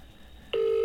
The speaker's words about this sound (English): Oh, it's just ringing. Is it going to ring through? Come on, get to a message.